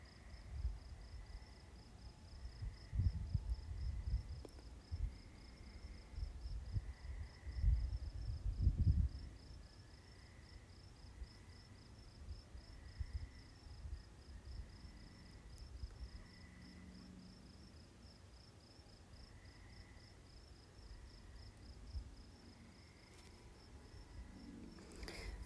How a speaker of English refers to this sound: I hear the frogs. I hear a car far away. I hear crickets, that little chirping sound. And at the very beginning, maybe you heard an airplane.